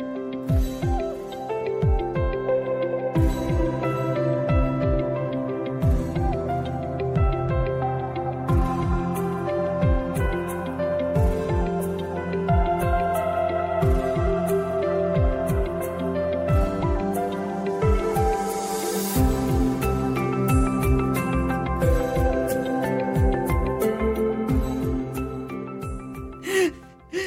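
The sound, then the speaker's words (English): An ambient electronic song plays on its own, with sustained synth pads layered over a steady, pulsing low beat, holding an even, fairly loud level throughout. “And the song, …, plays.”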